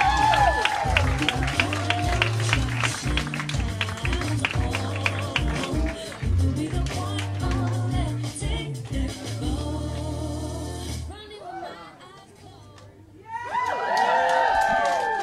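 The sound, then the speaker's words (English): An audience at a comedy show claps and cheers over loud, bouncy walk-on music with a thumping bass line as a comedian is introduced. The music cuts out near the end and voices call out. “All right, start clapping right now, big time.”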